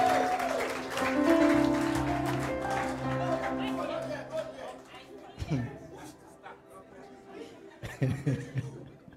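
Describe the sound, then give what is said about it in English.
An audience claps in praise of the Lord, a dense burst of applause with sustained musical tones beneath, tapering after a few seconds. Voices and scattered cheers carry on over it. “Somebody give the Lord a mighty clap of praise.”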